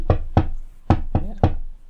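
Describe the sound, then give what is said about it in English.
Five firm, loud knocks on a door come in an uneven pattern: two quick raps, a short pause, then three more. No one speaks. “Oh, and is that... someone else at the door?”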